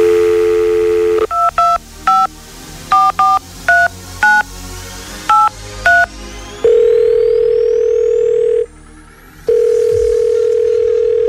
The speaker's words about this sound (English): Well, I'm going to ring one of your friends because I've heard otherwise. Let's give one of your friends a little call.